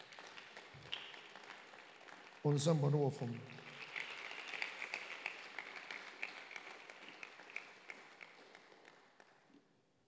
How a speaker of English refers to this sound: Can you clap your hands, everybody in this place?